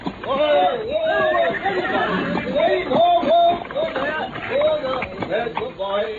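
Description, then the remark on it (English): A horse pulling a driverless trap whinnies and neighs several times as it is stopped, its shrill, wavering calls rising and falling over a busy, noisy background with people's voices mixed in. “Try to stop the horse.”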